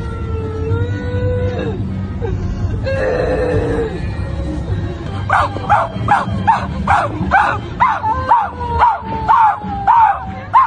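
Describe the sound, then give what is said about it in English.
People grieving on a street in London imitate dogs with their voices: after a few seconds of drawn-out wailing, a rapid run of loud, rhythmic barks repeats about eight or nine times over a busy, noisy background. “These people are just on the street crying and grieving and just barking like dogs”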